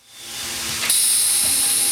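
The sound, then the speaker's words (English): A loud, steady hiss of steam from a vinyl record pressing machine, in a big hangar-like room full of machines where PVC pellets are heated with steam into soft, hockey puck-sized lumps, swells in, then jumps sharper and brighter, holding continuously to the end with faint mechanical clanks beneath. “Gallons of small PVC pellets are poured into hoppers, heated up using steam, and formed into soft, hockey puck-sized lumps, also known as biscuits.”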